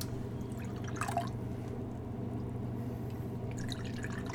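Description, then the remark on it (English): Water and then beer, Murmuration from the Seven Sun brewery, are poured into a glass, splashing and trickling in two short bursts over a steady low background hum. No one speaks. “Let me get a little bit of water in here, and then beer.”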